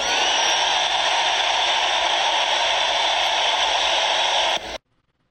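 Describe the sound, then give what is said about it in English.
A large rally crowd cheers and roars, voting by cheers between the slogans "Make America Great Again" and "Keep America Great", in one loud, unbroken wash of noise for several seconds before it cuts off abruptly into silence. “Let me just hear by your cheers what you like.”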